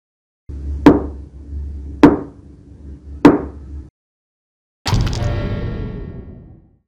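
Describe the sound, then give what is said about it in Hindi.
Three heavy, evenly spaced knocks on a door over a low, steady hum, then after a short pause a longer, brighter resonant burst that slowly fades out. “आंखें हल्की हल्की सी भारी होने लगी ही थी कि अचानक मेरे दरवाजे को किसी ने नॉक किया और मुझे फिर से सुनाई पड़ा।”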